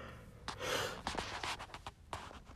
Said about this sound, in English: Oh my God. I hate when I yawn. Especially when I'm doing these podcasts.